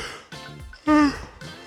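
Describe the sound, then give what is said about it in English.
A person yawns, a drawn-out voiced breath that swells into a loud, tonal middle stretch and then trails off into softer breathy sounds. “God damn, these yawns piss me off.”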